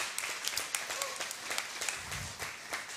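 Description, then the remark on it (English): An audience claps steadily during a sermon, many hands making a dense, bright patter with sharper individual claps standing out, and a faint voice underneath. “Come on, clap for just a moment.”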